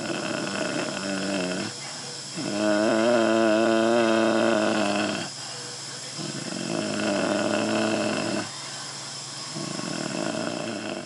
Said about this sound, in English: He has a tracheostomy tube in his throat, so he's not supposed to be able to do that. And I hear something else. He's making a deep humming sound.